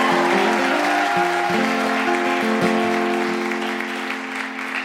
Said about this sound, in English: I want to give it out one more time for the incredible founder of the feast, Deborah Frances White. Please give her a massive round of applause.